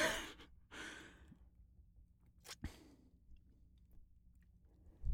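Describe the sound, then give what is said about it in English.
Quiet sipping from a drink being tasted, after first coating the mouth: a couple of soft airy slurps, a small click and a faint swallow, with no talking. “Coating is complete. Activating sip.”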